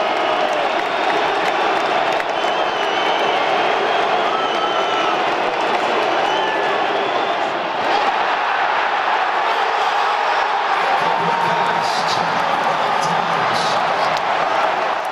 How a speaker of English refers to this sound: Just have a listen to this Packer crowd inside the Tottenham Hotspur Stadium. Never have I heard a crowd so raucous on third down. Just check this out.